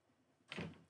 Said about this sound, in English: Close the door.